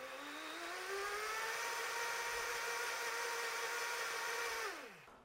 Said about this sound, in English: bear with me, we're gonna blend this. We'll shut off the mic so that you guys don't get your ears burned. And typically, it's going to take me about 30 seconds on the highest setting on the blender. So here we go.